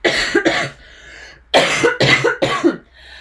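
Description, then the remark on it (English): Two quick coughs, a short pause, then a burst of three harsh coughs in a row, loud with no talking. “Sorry, I should have done a cough warning.”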